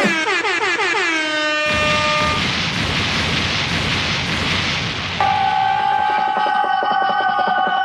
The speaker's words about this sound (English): Wait, should I put air horns to that?